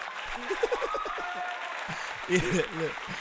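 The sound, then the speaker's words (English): A cheering crowd sound effect played from a soundboard: a crowd cheers and applauds, with bursts of shouting and whooping voices riding over a steady wash of clapping for a few seconds. “Can I get a cheer?”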